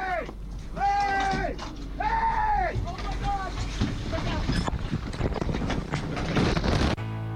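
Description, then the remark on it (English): A motorboat engine roars with a churning, splashing rumble as the boat runs over divers in the water in Florida, while people shout in alarm over the noise before the engine cuts off abruptly near the end. “I was with friends and the boat was literally on top of us.”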